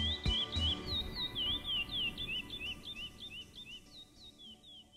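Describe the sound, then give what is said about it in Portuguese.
Small birds chirp in quick, repeated high tweets that run steadily throughout, layered over a low rumbling background with no voices. “em alguns momentos, talvez tenha lembrado dos passarinhos que sonhava capturar na infância.”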